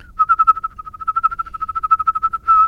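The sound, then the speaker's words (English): A steady whistled tone held at one pitch, pulsing rapidly and evenly as the breath switches between inhaling and exhaling, ending with a brief sustained note. No one speaks. “Inhaling and exhaling.”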